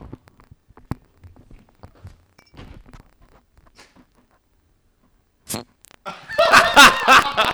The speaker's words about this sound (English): Oh, is it a twist off? Yeah, it's a twist off.